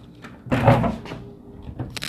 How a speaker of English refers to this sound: But it's a really nice day out. I'm gonna open all the doors now.